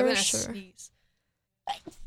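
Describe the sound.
A single small sneeze bursts out close by, with a soft puff right after, then a short silence before someone starts talking.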